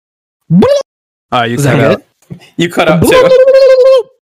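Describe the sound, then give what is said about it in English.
A person mimics a turkey gobble with their voice: a few loud, warbling vocal bursts separated by short pauses, ending in a longer wavering call. “I went full turkey on that one.”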